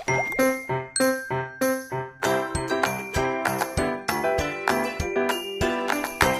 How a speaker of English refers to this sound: Yeah, I heard the transition music.